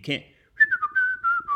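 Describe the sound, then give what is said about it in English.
A short whistled melody of several clear, sustained notes gliding between pitches, fairly loud, preceded by a brief burst of voice. “I mean, your whistling was good.”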